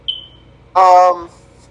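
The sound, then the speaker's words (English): A single short, high-pitched fire alarm beep chirps once near the start and quickly fades, followed a moment later by a brief burst of someone talking. “The fire alarm agrees with me.”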